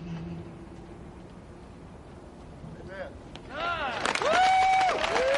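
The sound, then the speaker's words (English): A crowd cheers and applauds a singer after a performance of Amazing Grace, as he takes off his hat and salutes the president: after a few quiet seconds, overlapping whoops and shouts rise over a steady wash of clapping, swelling louder toward the end. “His grace among that cheering crowd, taking off his hat, saluting the president, the new Vice President, and shaking the hand of outgoing Vice President, former Vice President, Mike Pence.”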